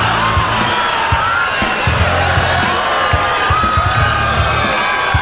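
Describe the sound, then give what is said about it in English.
A large crowd cheers and whoops loudly and continuously, a dense wash of many voices with scattered shouts and rising yells over several seconds. “What are you cheering for?”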